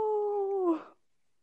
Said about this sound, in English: Meanwhile, what cats do when they're emotionally distraught is meow at the closed door, which I don't know if that's coming through on the recording, but I can hear it loud and clear. Fine, I will open the door so that our cat will stop meowing